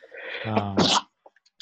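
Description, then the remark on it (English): A single loud sneeze: a voiced intake building into a sharp, breathy burst, followed by a few faint clicks and rustles. “Bless you.”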